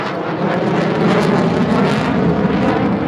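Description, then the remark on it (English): An F-18 fighter jet roars overhead, a loud, dense rushing rumble that swells slightly midway and stays steady throughout, overpowering, with no voices. “And there's a commercial of a father and a son standing together, and a fighter jet, an F-18, comes by and roaring.”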